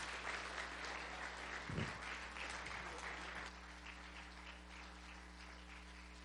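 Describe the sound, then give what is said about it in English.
A crowd applauds steadily, a dense wash of many hands clapping at an even level for several seconds, with a brief low thump partway through and a slight easing toward the end. “One more time, give them a big hand clap of appreciation.”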